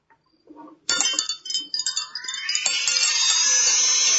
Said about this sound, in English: There's Dr. Carter's dinner gong. Come along.